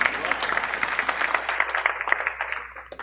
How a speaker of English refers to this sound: They drove all the way from Santa Barbara to be here. Let's clap for him.